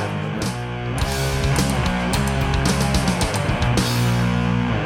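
A cover version of a rock song plays loud and full, with steady pounding drums and thick sustained guitar chords filling the whole stretch, no voices over it.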